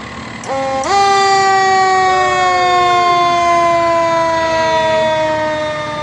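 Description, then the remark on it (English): Rockdale County fire engines, Engine 9 and Engine 8, blare their sirens and horns in a loud sustained wail with overlapping tones that kicks in abruptly and holds steady as the trucks roll slowly past in a parade. “Go ahead, Rockdale County. Engine 9. Engine 8.”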